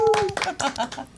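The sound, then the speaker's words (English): A few people clap quickly for a brief moment to welcome a special guest while someone lets out a high, sustained cheer, then voices start talking over the fading applause. “Can we get some applause right yes. here?”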